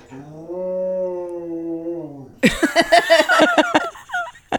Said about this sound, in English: That's Willow. She's singing the song. Willow is our dog.